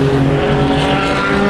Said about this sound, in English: This is his first Le Mans, so he's all over the place. He's been up against the fence, listening to the cars.